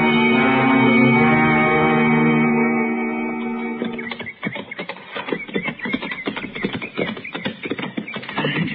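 horses walking

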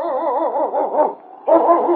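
husky sled dog barking

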